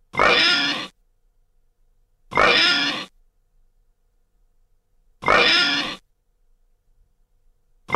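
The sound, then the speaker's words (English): A person imitates a pig with loud oinks given as a score, three full snorting grunts spaced a couple of seconds apart and a fourth cut off at the end, with no talking between them. “how many oinks did the Great British Bacon earn?”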